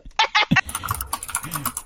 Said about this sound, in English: Okay, the dragon pulls out a keyboard and sends a few quick messages to a friend of theirs, and then reads the reply.